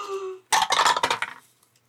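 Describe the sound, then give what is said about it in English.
Dice clatter across a hard tabletop in a quick burst of rattling hits that settle and fade within about a second, fairly loud, after a brief faint tonal hum; the dice are rolled for a persuasion check in a game. “Go ahead and make a persuasion check. Oh my gosh, which dice?”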